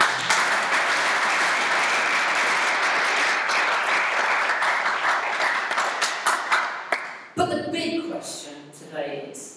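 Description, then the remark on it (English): A church audience claps steadily for about seven seconds in tribute to past witnesses of the faith, a dense, loud wash of many hands that thins into scattered claps before a man begins speaking. “Why don't you give them a clap?”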